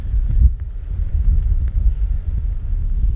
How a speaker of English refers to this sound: It's really windy. Yeah. The sun came out there just for a second. It was really warm, and now it's really freaking windy because we're turning the corner.